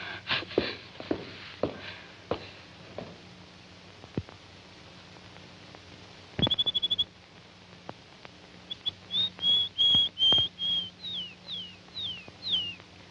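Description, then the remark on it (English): A small bird chirps in a quick trill, then sings a run of high, sweet notes, some slurring downward, with a few sharp clicks earlier and a low steady hum underneath. “Poor little bird. I know just how you feel.”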